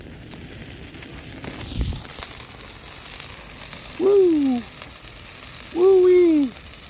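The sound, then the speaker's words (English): A bonfire crackles and hisses steadily after diesel fuel is poured on it, with a dull thump early on and two short, wavering tonal moans rising above the fire noise near the end. “When in doubt, pour diesel fuel on it. Mind you, this is not gasoline. Do not pour gasoline on a fucking bonfire or cause an explosion.”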